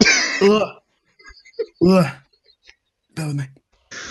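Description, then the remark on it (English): A person coughs and clears their throat in several harsh, rasping bursts with short pauses between them, some with a strained, voiced edge, and no talking, caused by pastry dust left in their mouth. “Sorry, I think I had a bit of pastry left in my mouth from earlier.”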